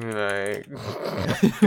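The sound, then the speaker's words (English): Rapid keyboard clicking patters along as a man searches on a computer for someone's IP address, partly under a sustained vocal sound and murmuring voices, with a couple of sharper taps near the end. “Man's clicking away like he's trying to find evidence.”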